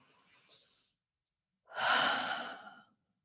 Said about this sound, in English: Take a couple of deep breaths in and out again, because that feels so nice to settle into this moment and to ground.